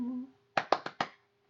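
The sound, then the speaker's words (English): Four sharp hand claps in quick, even succession, each a crisp, bright slap, after a brief trailing voice sound and over a faint steady hum. “Got the clap for me.”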